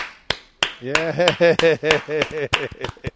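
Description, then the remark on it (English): A short burst of hand clapping given for the Holly Springs, around a dozen sharp, irregular claps from a small group rather than a big crowd, with a voice calling out over them. “I'd like to give a round of applause for the Holly Springs.”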